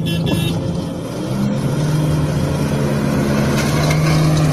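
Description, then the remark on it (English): A small lawnmower with a Briggs & Stratton 600cc motor idles steadily, a low rumbling drone with a constant hum around its pitch, loud and unbroken throughout with no talking. “This is the nicest lawnmower you have ever seen.”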